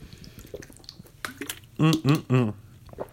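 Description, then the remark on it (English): Wet sipping noises with faint clicks, followed by three loud, throaty gulps in quick succession as someone drinks water from a red Red Robin Gourmet Burgers and Brew water bottle. “Let me get a sip of water from my Red Robin Gourmet Burgers and Brew Red Water Bottle to celebrate.”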